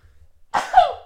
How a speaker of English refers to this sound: Oh my god, I'm about to sneeze.